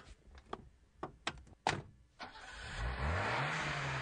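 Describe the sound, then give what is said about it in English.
A few sharp thunks like car doors closing, then the engine of a newly bought car turns over and revs up, its pitch climbing as the loud roar builds and holds. No one speaks. “Check out my new car I just got from Riverside Premier Motors.”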